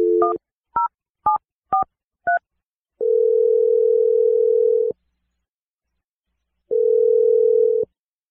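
A quick series of five touch-tone beeps as a number is dialed, followed by two long steady ringing tones separated by a pause, clear and close with no talking.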